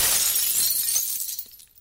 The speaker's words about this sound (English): That was a Churchill Downs Centennial bourbon glass. Yeah, too bad about that. You could probably sell the shards on eBay.